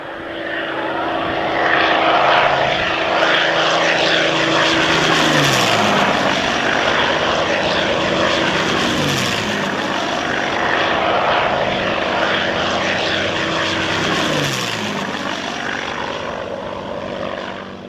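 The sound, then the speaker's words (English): Three roaring P-51 Mustang propeller fighter planes sweep about 200 feet over a car on the highway north from Caen toward Normandy, France, one after another, their loud engine drone rising and falling in pitch with each pass over a continuous rumble, no voices. “And we're driving along and all of a sudden three P-51 Mustangs go ripping right over the top of the car.”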